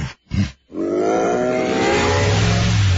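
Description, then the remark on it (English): A truck engine turns over with a couple of short sputtering bursts, then catches and revs into a loud, sustained roar that climbs steadily in pitch, with no voices. “Are you ready to roar out of hibernation?”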